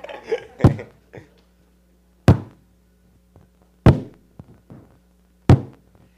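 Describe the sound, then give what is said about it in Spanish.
Four heavy, booming thuds land at a slow, steady pace, with softer knocks between them, imitating sledgehammers pounding on a floor. Loud, with no talking. “Y escuchó como si estaban dando mandarrias al piso.”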